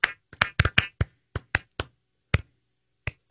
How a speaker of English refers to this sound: You know, I think I will need some clapping. Okay, fine.